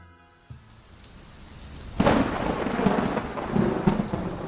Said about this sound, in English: It was a dark and stormy night. The time was about 7:55 p.m. when it started to rain.